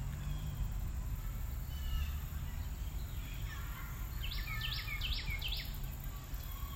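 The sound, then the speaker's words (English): A short run of about five quick bird chirps rises over steady outdoor rumble and breeze noise in a park on a cool, sunny day, fairly faint, with fainter calls scattered earlier. “It's cool, sunshiny, lots of kids in the park today, and birds. Don't know if you can hear the birds or not.”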